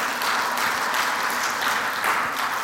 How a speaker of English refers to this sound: Very nice. I love the color in this one. Oh, superb. Well, join with me in applauding our young folks for that. Excellent.